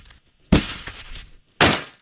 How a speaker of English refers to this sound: Sound of December with snow. Snowballs? Snowballs, absolutely. Yeah, what? Wow. I was like, that's a really hard snowball fight. Yeah, sometimes we put ice in the middle of the snowballs.